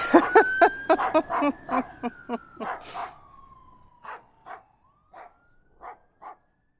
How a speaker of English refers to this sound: Oh, it's a fire truck! I better... Oh, I'm gonna go chase it!